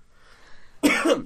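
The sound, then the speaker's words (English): A single loud cough bursts out after near silence, harsh and raspy with a brief second push before it cuts off. “So hopefully this cough will be on soon.”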